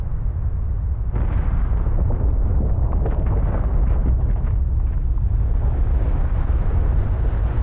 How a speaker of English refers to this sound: The calving face is 300, sometimes 400 feet tall. Pieces of ice were shooting up out of the ocean 600 feet and then falling.